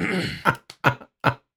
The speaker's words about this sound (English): Okay, let me clear my throat.